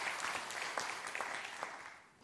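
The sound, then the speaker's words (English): An audience claps steadily for a couple of seconds in response to being asked to clap if they remember where they were on 9/11, a dense patter of many hands with a few sharper individual claps standing out, fading slightly at the end. “Clap if you remember where you were on 9/11 when you found out.”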